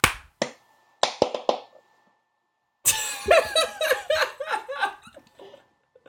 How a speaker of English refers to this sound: I'm sorry. I have a new headset, and I didn't know if the mic would pick it up, so I was clapping furiously. It didn't pick it up at first.